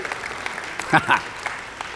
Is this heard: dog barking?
no